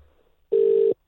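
A phone line's ringback tone as a call is placed to bring a guest onto a show: a steady, clear electronic tone lasting under half a second, a brief pause, then the next ring beginning. No voices.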